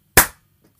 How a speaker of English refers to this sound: Clap. Clap for me. Okay. Good okay. Clap for me. And again.